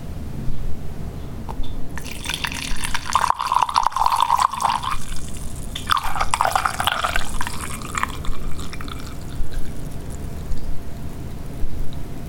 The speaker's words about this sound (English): Now listen very carefully. Because it's obviously a liquid being poured. Right. But what type of liquid and from what? Yeah. Because it really sounds like somebody peeing. Well, okay. Into a decanter.